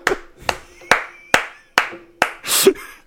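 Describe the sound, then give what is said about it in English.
Slow, sharp hand claps, about six of them at an even, steady pace, each crisp and fairly loud, ending in a brief rougher burst of noise. “Everybody, nigga, round of applause.”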